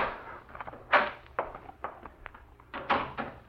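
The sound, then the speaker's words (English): A door handle rattles and clicks in a series of uneven metallic turns, followed by the muffled creak and knock of a door being pushed open. No voices. “The knob was turning in the door.”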